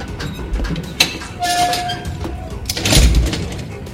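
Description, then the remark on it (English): Heavy doors on a ship slam shut with a sharp bang, a metallic scraping squeal, then a deep, booming thud near the end. The sounds are loud and echoing, with no voices. “Seal those doors immediately.”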